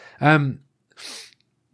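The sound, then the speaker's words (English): A single sneeze: a loud, voiced inhaling 'ah' swells for a moment, then after a brief pause breaks into a short, hissy burst of air, with no talking around it. “I'm getting a bit of a sniffle.”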